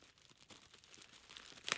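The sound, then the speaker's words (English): Quiet crinkling and tearing as the taped wrapping of an oddly shaped gift is pulled open, a steady rustle of paper and tape that ends in one sharper, louder rip. “Oh, you need some scissors. Very... it's like a Barbie doll trapped in there. Oh my God. Did you wrap it in duct tape?”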